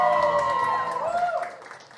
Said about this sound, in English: Why did I get less applause than the ice cream?